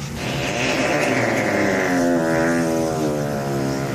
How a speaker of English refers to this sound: That's how we introed it, right? Oh yeah, the time machine. Oh, that was a time machine.